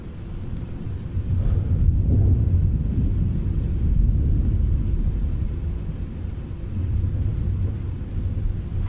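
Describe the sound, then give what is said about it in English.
Deep, loud rolling thunder rumbles on continuously for several seconds, swelling and easing in heavy low waves, with no voices present. “I've never heard thunder like this before.”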